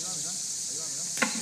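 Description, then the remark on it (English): A steady, high-pitched drone of cicadas chirping fills the field recording, with faint murmuring voices in an unfamiliar language underneath and a single sharp knock near the end. “Even though the bugs, the cicadas, are just as loud as they were before, it seems like maybe just psychoacoustically, psychologically, I'm trying to be smart, I'm tuned to listen to humans more than bugs.”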